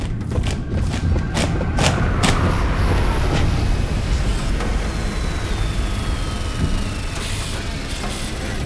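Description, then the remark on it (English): A spaceship appears and descends on a stage with a heavy, steady low rumble, broken by several sharp thuds early on and a thin high tone gliding slowly downward. It stays loud throughout, with no voices. “A ship has just appeared.”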